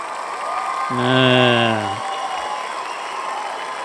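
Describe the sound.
A cheering crowd sound effect, played to celebrate a 10 out of 10 rating for the film Air: a steady, dense roar of many voices for about four seconds, swelling briefly near the start where one loud, tonal whoop rises above the noise.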